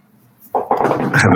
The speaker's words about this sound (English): I was going to say, sound like a cat was one of the things going for you there.